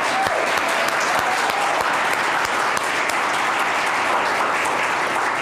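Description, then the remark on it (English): A crowd applauds the West Chorus steadily and loudly, a dense wash of many hands clapping at once with no pauses, sustained for several seconds. “Can we clap for them again?”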